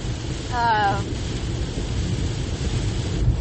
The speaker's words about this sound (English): I feel like I'm yelling, but it's because the rain is so loud. I feel like I have to yell.